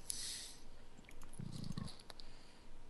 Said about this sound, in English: No, that was me stifling a belch.